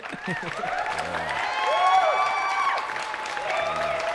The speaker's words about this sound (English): And yeah, without further ado, shout out to the in-studio crowd. Give us a round of applause.